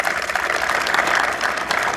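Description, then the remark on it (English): A large crowd at the Port of Baltimore applauds the United States Marine Corps on its 247th birthday, a dense, loud wash of clapping that holds at an even level throughout, with no voices standing out. “They deserve some applause.”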